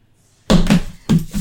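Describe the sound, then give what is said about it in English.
A hand slaps a table three or four times in quick, uneven succession, each a loud, flat smack with a dull low thump underneath, with no voices. “You don't need to slap the table every time.”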